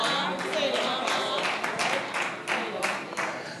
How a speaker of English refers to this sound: I didn't get too many claps. Did you hear that? Two claps. Everybody else said, say what?